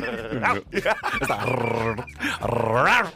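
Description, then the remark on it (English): A person's voice imitates a chihuahua growling, a continuous snarling rumble that rises into yappy, whiny pitch swoops, loud for about three seconds with no other talk. “Can you do dog noises?”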